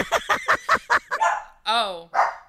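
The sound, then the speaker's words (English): A dog barks in a quick, loud burst of about five sharp barks, then lets out a high, wavering whine before one more bark. “Fucking dogs.”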